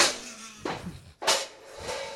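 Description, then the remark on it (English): Glass breaking as a cart crashes into the windows of a pound shop: three sharp, bright crashes, each a sudden burst of high, glittering shatter that fades before the next, with no voices. “That is 100% what breaking glass sounds like.”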